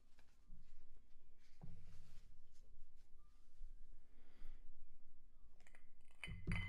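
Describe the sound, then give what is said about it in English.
Glassware clinking and clattering as items are handled and set down at an irregular pace while a bar workstation is cleaned up, ending in a louder knock. No one speaks. “Let me just clean up my workstation here, so I don't get anything on the computer.”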